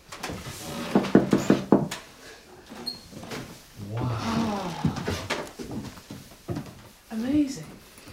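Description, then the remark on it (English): Old wooden floorboards creak and groan underfoot, several drawn-out, uneven creaks as someone slowly walks across, with small shuffles and knocks between them. “The most, creaky floorboards.”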